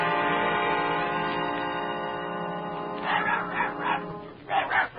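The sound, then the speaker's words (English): Dorothy's dog barks several times in quick, uneven bursts during the second half, loud, over a steady droning musical background that fills the whole clip. “Look, it's Dorothy's dog.”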